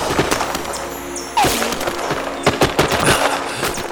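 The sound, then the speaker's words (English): A steady crackle of rifle fire, shot through mist at the rear of a column, fills the scene, with sharp loud shots bursting irregularly over a dense, noisy background, some cracks overlapping in quick clusters toward the end. “How can they tell who they're shooting at in this mist?”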